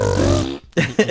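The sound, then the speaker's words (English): A short, buzzing fart noise made with the mouth, a low, loud raspberry lasting about half a second, followed by a brief pause and a couple of quick vocal bursts. “Fart noise.”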